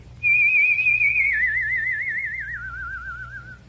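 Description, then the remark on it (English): A single sustained human whistle, loud, starting steady and then sliding gradually lower with a pronounced wavering vibrato for about three seconds, over a faint low background hum. “And all of a sudden, I discovered that I could make a whistle tone. And I kept on working until finally I had a pretty vibrant tone.”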